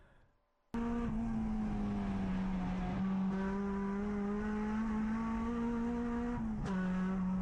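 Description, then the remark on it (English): An EM1 race car engine roars loudly, holding a steady, buzzing pitch, with one brief RPM drop near the end like a quick gear shift before it pulls on again. “That's the EM1.”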